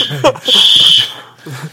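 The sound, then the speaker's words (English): A smoke detector lets out a shrill, high-pitched alarm tone that holds steady for nearly a second, fairly loud, with a voice speaking just before and after. “So, anyway, sounds like a fire alarm is going off.”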